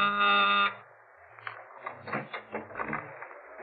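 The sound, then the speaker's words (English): A loud, harsh door buzzer sounds in one steady burst of under a second, then stops, followed by faint scuffling and soft knocks, as though someone is moving toward the door. “I was calling me and tell me how she made out with Mona Taylor's mother when my door buzzer phoned.”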